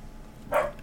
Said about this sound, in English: I'm trying to mute myself so that you don't get all the bark, bark, bark in the podcast.